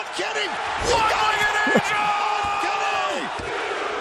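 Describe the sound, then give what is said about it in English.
A wrestling arena crowd cheers loudly and steadily, with rising whoops and yells over a dense roar, plus a couple of sharp thuds like ring slams. “Listen to this crowd.”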